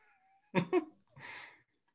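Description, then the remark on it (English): A person mimics a cat with two quick, loud meow-like cries followed by a breathy, hissing vocal sound, with no other talking. “I'm ready to shut this barking down and hit him with a little meow.”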